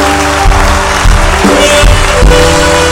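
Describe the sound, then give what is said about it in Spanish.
A church audience applauds loudly and steadily for the full three seconds, giving applause to Christ as King of Kings and Lord of Lords: a dense wash of clapping with a few cheers, over sustained music with held keyboard-like tones. “¿Alguien puede darle un aplauso al Rey de Reyes y Señor de Señores?”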